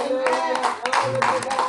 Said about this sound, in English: Amen. Y'all clap for him. That's a great thing. And that's the scripture says, clap your hands for your people.